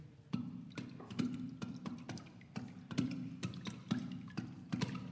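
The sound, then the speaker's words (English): Hollow, resonant knocks from water drums, tubes and glasses struck on water, in a steady, lively rhythm, about a dozen strikes with watery, ringing tones and bright clicky attacks, with no talking. “since we're asking you, would you mind playing a little bit of the with the glasses, what we call the tube drums here? Or the water drums, exactly.”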